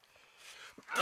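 A single loud sneeze: a soft rising intake of breath builds for most of a second, then bursts into a sharp, explosive blast at the very end.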